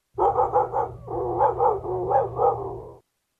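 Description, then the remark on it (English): A man convincingly imitates a dog barking with his mouth, a quick run of loud yaps flowing into a continuous string of rhythmic barks and growly whines for about three seconds, with no other talking. “That is Dan Orlovsky. That is not a dog. It's not a computer-generated noise.”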